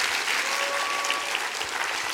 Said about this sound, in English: Let's clap our hands and rejoice to that.